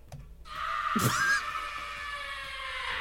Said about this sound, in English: So, I just play that scream.